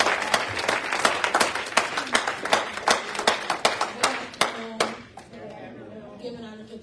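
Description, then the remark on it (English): A church audience claps for God during a testimony service, in a fast, dense burst of hand claps that thins into scattered, sharper claps before fading, with faint voices murmuring underneath toward the end. “Give God a hand clap as you give one.”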